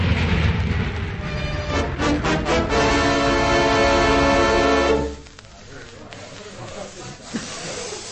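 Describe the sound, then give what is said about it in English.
A train grinds to an emergency stop after a passenger pulls the emergency cord at night: a loud screech and rush of rails and brakes for about five seconds, then cutting off abruptly to a quiet rumble with faint knocks. “If he pulls the cord tonight, he was bound to stop the train.”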